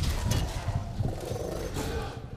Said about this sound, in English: He roars.